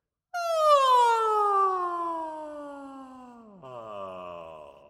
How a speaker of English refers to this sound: And I'm going to ask you to take what I would call is a yawn from your highest note to your lowest note. Mine might sound and look like this.